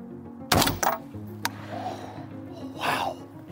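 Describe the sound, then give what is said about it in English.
A sharp rifle shot cracks out at a shooting range in Switzerland, followed by a couple of quicker sharp knocks and a rolling echo through the valley, then a breathy exhale as low hum continues underneath. “Man, the sound like okay. echoes through the valley.”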